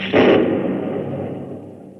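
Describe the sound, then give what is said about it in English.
A single sharp, loud crack of a lightning strike hits at once, then rolls into a long, fading rumble of thunder that dies away over the next two seconds. No voices. “When I was very young, I once got struck by lightning.”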